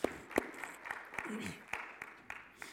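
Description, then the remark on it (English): Scattered, quiet applause from an audience clapping for a testimony: sparse, irregular claps rather than a steady ovation, with a faint voice murmuring briefly in the background. “You can clap for testimony.”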